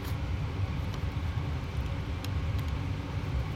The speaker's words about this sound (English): At 2 p.m., a black Ford pickup truck pulls up to the house